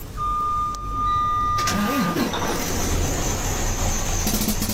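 A steady electronic beep gives way to a truck engine cranking to life and running with a loud, harsh rattling clatter, continuous.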